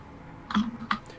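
A couple of quick keyboard keystrokes, two sharp clicks about a third of a second apart with a fainter tap after, typing on a computer keyboard with no talking.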